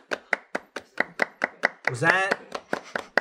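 Steady, rapid hand claps, roughly fourteen sharp even beats about four per second, with a short voiced whoop rising and falling over the claps partway through.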